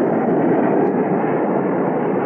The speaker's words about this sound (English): Well, what's that? Oh, that's the jet taking off from the north runway. It'll pass right over the house.